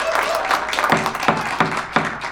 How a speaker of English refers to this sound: Seriously, these guys have been doing such a great job. Can we get a round of applause for our jury? Can we do that?